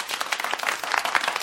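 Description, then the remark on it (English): Golf applause: a steady, dense patter of many hands clapping together, crisp and bright, holding an even level throughout with no voices standing out. “Here's golf applause.”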